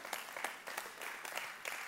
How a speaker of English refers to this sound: Thank all of you that just clapped. It was like seven of you. Thank you so much. That's encouraging.